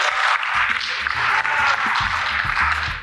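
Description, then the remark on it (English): An audience claps and cheers loudly and continuously at the wrap-up of an event, a dense wash of overlapping applause with voices shouting and whooping underneath throughout. “My boss is like 3 things over, so everybody clap, scream, do something.”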